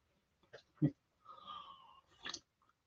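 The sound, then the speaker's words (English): A quiet sip from a drink: a soft clink or gulp, a drawn-out slurping intake, then a brief breathy exhale, with no talking. “I had to get a little sip there.”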